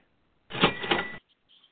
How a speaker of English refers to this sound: In fact, he deserves two cash registers. It's Kenny Britt at an ADP of 112.